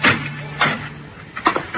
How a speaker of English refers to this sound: I went to my own door, and as casually as I could, I opened it.